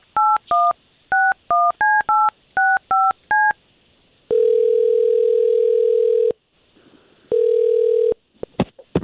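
telephone number being dialed

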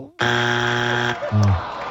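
game show wrong-answer buzzer

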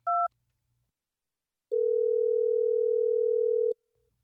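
telephone dial tone

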